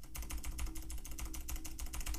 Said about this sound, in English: You do you hear those big chonky clicks? Welcome to Luke Patrick's Clunky Clacky Keyboard Corner, where today we're enjoying the ASMR-infused sounds of Sam's brand new Razer keyboard with green switches. And let's just enjoy it for a second.